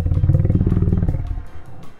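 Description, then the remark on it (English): A person pretending to be a lion in a game imitates a lion's roar: one loud, deep, rumbling growl held for over a second, then fading into a quieter rasp. “Simon says, pretend to be a lion.”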